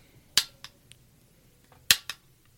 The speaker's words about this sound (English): Drips. Slowly, but surely, into the canteen.